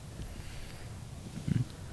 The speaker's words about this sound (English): Does this dog always bark? No. I've never heard this fucking barking dog. Well, normally you're just, you know, in your room, so you probably can't hear it.